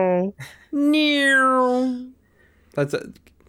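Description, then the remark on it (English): A person's voice does a drawn-out, falling meow in imitation of a cat, loud, framed by short vocal bursts before and after. “You're not being a cat.”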